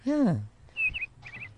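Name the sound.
birds chirping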